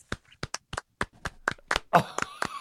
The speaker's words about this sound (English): Oh, I love the fact that I'm getting a applause from two of you. That is unbelievable. Oh, thank you.